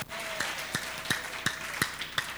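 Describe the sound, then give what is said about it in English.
An audience claps together during a sermon in a steady rhythm, about seven sharp, even beats, over a sustained humming tone in the background. No one speaks. “No, all those who are clapping, may God remember all of you.”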